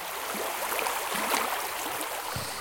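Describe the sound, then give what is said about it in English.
Steady rushing water gushes continuously, like an overflowing toilet or a burst pipe, an even hiss with small splashy surges and no voices. “Is that my toilet overflowing? Is that my hot water heater bus?”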